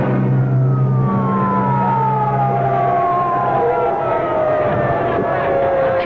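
A loud ambulance siren wails in long sliding tones that sweep downward, over a steady rumble of engine and street noise.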